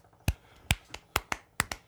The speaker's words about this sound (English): Slow clap. Slow clap for the gentleman.